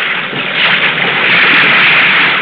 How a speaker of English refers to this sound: With the wind blowing 20 to 25 knots and the sea coming at you in long rolling swells, the tops blowing off, feathering into the night, the bow of the Segway seems like a giant bucking bronco, lifting high only to plunge back in, pulpit and all